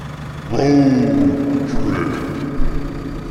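A truck (rig) engine is fired up for a drive to Susanville, California; it turns over and catches, then settles into a steady, low droning idle with a slight drop in pitch and an occasional uneven surge.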